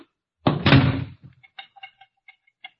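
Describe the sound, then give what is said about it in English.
A kitchen back door is kicked shut with a heavy thud, followed by a few faint rattles and clicks as it settles in its frame. “The back door's wide open. I'll close it. Wait a minute, don't touch it. Don't touch that knob. Kick it shut.”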